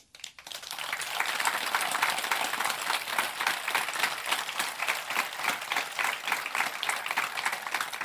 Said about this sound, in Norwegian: Du vet sånn applaus med latter og applaus. Dette var en sånn, det var en stor klem. Det sånn varm applaus.